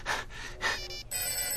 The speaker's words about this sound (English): Good grief, this phone is... All right, this is far enough. I shall mute this ringing beast. I shall mute thee, thou incessant beast of burden, thou ringer of terror. With a simple yank on your cord, I shall render you speechless.